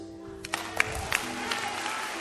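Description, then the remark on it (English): An audience claps together, a brief scatter of sharp hand claps swelling into a steady, noisy patter that holds at a moderate level without fading. No voices stand out over it. “It's a good place to clap.”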